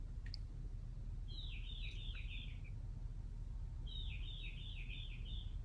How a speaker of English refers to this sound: But in the middle of the night, he's the only bird out there.